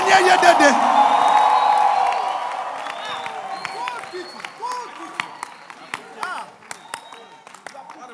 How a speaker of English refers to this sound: Clap your hands and give the Lord a shout.